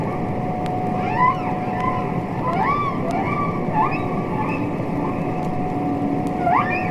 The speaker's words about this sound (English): Which was itself given voice by the recordings of humpback whale songs made by Roger Payne. Releasing those as a final album in the charts gave the whale a voice, you know, and an animal that been unable to protest its abuse suddenly had a voice.